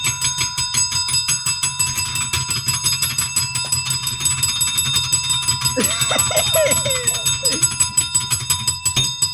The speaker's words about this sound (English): Get your bell ready. It's always ready. I got the job!